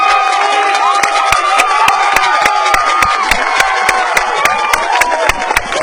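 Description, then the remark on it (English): A baseball stadium crowd cheers loudly after Kyle Lovelace's bunt and an errant throw to first let JT Pennick score, a steady, dense roar with sharp claps and scattered whoops popping through it for about six seconds, no announcer voice on top. “I'm not even going to try to talk over the crowd here as Kyle Lovelace laid down a bunt.”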